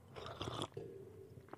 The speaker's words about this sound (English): And you know, it feels good. It feels good for you to hear me sip because you're like, oh shit, I need my coffee. And if you didn't have your, and if you already had yours and you're like, man, he's reminding me of those first couple sips.